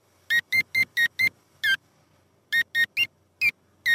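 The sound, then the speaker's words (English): Eleven short electronic beeps from a keypad door lock tap out a simple tune, a run of five quick even tones, a pause, then more beeps stepping slightly up and down in pitch, with no voices. “What's it used to play it? Carrot. A keypad door lock.”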